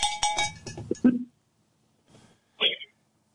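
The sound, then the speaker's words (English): A voice speaks briefly, then after a pause a faint knock and a single bright, metallic cowbell clank ring out, the clank fading quickly. “Oh, they're just cowbells.”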